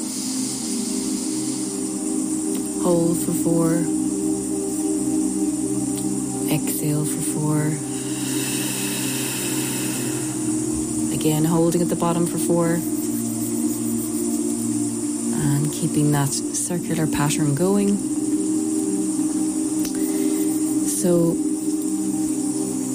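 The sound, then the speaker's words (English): Warm rain falls as a steady, even hiss that never lets up, while a calm voice speaks slowly over it with pauses between phrases. “if you can hear, we have rain falling in the background.”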